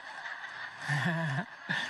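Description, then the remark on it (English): A person's imitation of a turkey call: one throaty, warbling note lasting about half a second, then a brief second yelp, over a steady thin background hum. “And so when I go out in the woods and I'm talking to real turkeys, the stuff just comes out, okay?”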